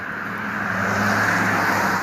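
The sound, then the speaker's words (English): A car on the road late at night, its steady engine and tire hum swelling slightly louder midway as it approaches and rolls past, with a low droning undertone and no talking. “Another car is coming.”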